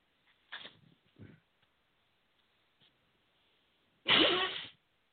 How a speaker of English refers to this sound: Let me blow my nose up and get me a little sip of water here.